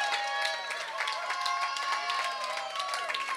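Steady audience applause for a woman who has just finished speaking fills the whole stretch, a dense wash of many hands clapping at an even loudness, with some crowd voices mixed in.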